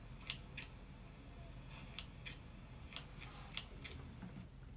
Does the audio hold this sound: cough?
no